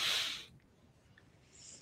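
A woman coughs once, a short, harsh cough, breathy and hissing, then it fades into near silence with a faint airy exhale at the end. No talking.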